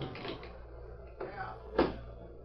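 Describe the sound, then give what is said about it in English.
A knife blade pries at a locked desk drawer, with scraping and rattling and then two sharp wooden cracks as the lock gives way, fairly quiet. “Now, the drawer is locked. Give me your knife, will you? Here, knife. Thanks, Tonto. I'll have to pry the lock.”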